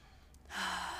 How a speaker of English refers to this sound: Often I'll sniff my coffee.